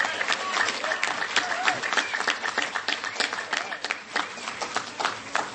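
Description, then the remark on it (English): An audience breaks into steady applause to show how many of them already use the library service, many hands clapping in a dense, crackling wash that holds at a fairly even level throughout, with some voices mixed in. “By way of applause, how many of you guys use the library service already?”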